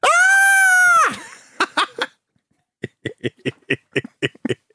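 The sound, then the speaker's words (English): A person performs a scary scream on request: a loud, shrill, sustained scream lasting about a second, followed by a run of short, choppy vocal bursts in a quick, cackling rhythm. “Scary noises. Do some evil laughs and screams to go on.”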